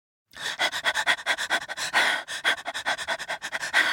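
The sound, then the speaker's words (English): A storyteller's voice imitates a story character's rapid, out-of-breath panting: quick, breathy huffs in a steady, fast rhythm, fairly loud, with no words spoken. “Panted Pip.”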